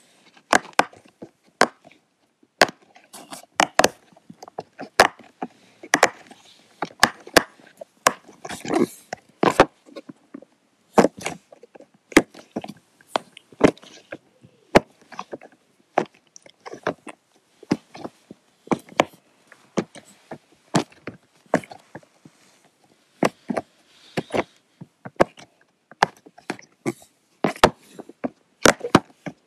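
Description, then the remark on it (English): A poppet fidget toy is pressed again and again, giving a long run of sharp, crisp pops and clicks in an uneven rhythm, some louder than others, with no talking. “So the first one is a poppet. So poppets make these really nice noises.”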